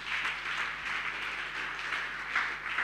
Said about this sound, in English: Let me hear you clap your hands for Jesus.